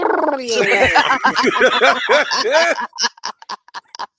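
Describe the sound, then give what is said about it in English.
A voice imitates the sound effect of a man's body filling with fluid and spilling across the floor as a puddle: a gurgling, gargling sound with rapid warbling pitch wobbles, then a string of short, wet spitting bursts like liquid splattering. “I can't even do it right. I'd have to be gargling water.”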